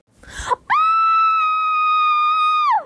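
A woman lets out a sharp gasp followed by a long, loud, sustained scream of horror that holds a steady high pitch for about two seconds before trailing off.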